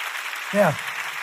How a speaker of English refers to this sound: Clap your hands about it.